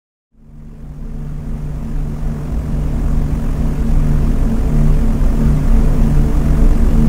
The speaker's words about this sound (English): Timothy awoke to the sounds of roaring engines in his ears and looked up at the riveted metal ceiling with four square windows making a cross above him.